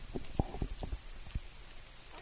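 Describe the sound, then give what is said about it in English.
Bearded dragon lizards crunching food: a quiet, irregular series of small crisp crunches and clicks, about half a dozen bites over two seconds, with no talking. “A little crunching sound.”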